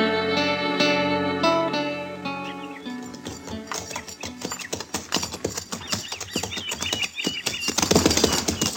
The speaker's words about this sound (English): Oh, this dang horse has tromped in every prairie dog hole since we left Cimarron. He'll break his leg yet.